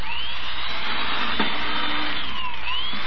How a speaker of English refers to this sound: Look at it drill holes through this board. Oh, it drills too fast.